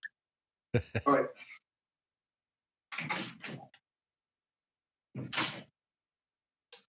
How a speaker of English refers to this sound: And sorry, I just have to pause 1 minute because the cat has decided to scratch the door.